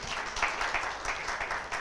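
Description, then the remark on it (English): A crowd applauds for a Bible verse just read aloud, many hands clapping in a dense, steady patter at moderate loudness for the full stretch, with no voices rising above it. “You can clap hands for that one and I will explain to you.”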